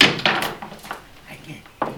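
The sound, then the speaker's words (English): A chair is shifted, giving a few short wooden knocks and scrapes at uneven intervals, with faint voices murmuring in the background. “We'll take a chair for me.”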